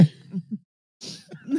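A person coughs and clears their throat up close: a short rough burst, a brief pause, then a harsher, breathier round of hacking coughs.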